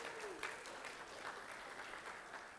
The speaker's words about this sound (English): I only said that for the applause.